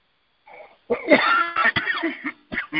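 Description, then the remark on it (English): A loud fit of coughing from smoke: a soft first hack, then a series of harsh, raspy coughs in quick succession with brief pauses between them. No speech. “Smell pretty bad, and I don't want to cough in here.”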